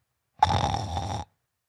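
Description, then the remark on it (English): A person makes a single loud, rough snoring sound lasting under a second, a raspy throaty rattle with nothing else around it. “We don't need the snoring. It's implied.”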